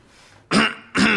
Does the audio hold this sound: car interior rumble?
no